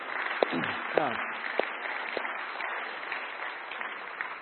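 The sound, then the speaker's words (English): A crowd applauds steadily for several seconds, a dense wash of clapping with a few sharper claps standing out; no one speaks over it. “So, and if I say something really brilliant today, you can clap for that too, okay?”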